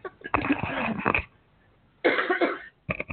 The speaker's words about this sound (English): Oh, okay, sorry. Had to cough.